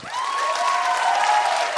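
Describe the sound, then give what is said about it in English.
A comedy show crowd bursts into sustained applause as a vote in an audience survey, for choosing never to have to pee again, steady clapping with some whoops and cheers mixed in, loud and even throughout the short burst. “Let's do an audience survey. Yeah. Round of applause.”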